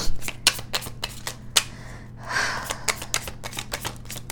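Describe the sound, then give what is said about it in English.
A deck of tarot cards being shuffled: a steady run of crisp flicks and taps with a brief softer swish midway, with no voices. “While I'm shuffling, I wanted you guys to know that I'm going to make a special announcement to celebrate all of you”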